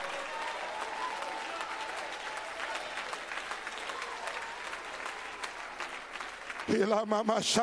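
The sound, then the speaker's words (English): An audience claps its hands in a steady, dense wash of applause for several seconds, then a loud voice starts speaking over the last of the clapping. “Since you won't clap voluntarily, I'll make the hell so bad in your life where you can't help but lift up your voice and clap your hands to get this thing out of you.”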